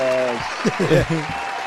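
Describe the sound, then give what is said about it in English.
A clapping applause sound effect plays throughout as a steady wash, with a sustained tone at the start and a brief voice cutting in over the middle. “I'll just give you some claps.”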